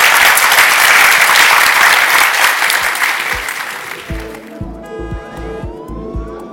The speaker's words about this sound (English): So if you could all put your hands together, and I think we deserve a round of applause for that.